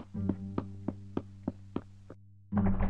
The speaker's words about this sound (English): That sounds like the door's just locked.